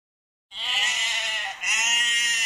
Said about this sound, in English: A sheep.